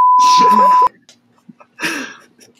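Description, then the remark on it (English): A loud, steady, high-pitched censor bleep covering swearing lasts under a second, laid over someone talking; after a brief quiet pause, a short burst of voice follows. “Censor moment.”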